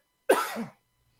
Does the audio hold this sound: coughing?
yes